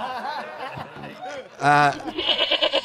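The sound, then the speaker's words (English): A loud, harsh, angry goat bleat bursts out for a moment, strained and wavering, between stretches of chattering voices and light laughter. “It was a very angry goat.”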